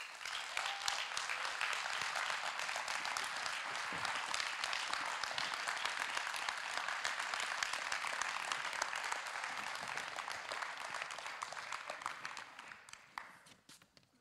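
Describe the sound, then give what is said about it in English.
A church crowd breaks into sustained applause welcoming a pastor, many hands clapping in a dense, steady roar for about twelve seconds before it thins out and fades at the end. “we clap at the end of worship sometimes”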